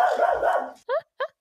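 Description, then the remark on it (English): A dog barks twice in quick succession, sharp, after a stretch of muffled, continuous barking or growling-like noise at the start. “Oh, I'm sorry. I have a lot of animals.”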